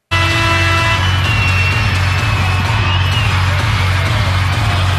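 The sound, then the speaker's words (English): A basketball crowd of over 5,000 kids in the Marriott Center roars loudly and without pause in the final minutes of a women's basketball game, a dense wall of noise with high-pitched screams and shrieks piercing through a deep, rumbling low end. “The noise level in the Marriott Center in the final minutes of the women's hoops game yesterday.”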